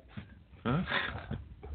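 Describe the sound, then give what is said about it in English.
A big dog named Leo breathes heavily, a loud rasping burst of panting with a brief whiny vocal tone, followed by softer snuffling breaths. “I don't know if you can hear him heavy breathing. That's not me, that's him.”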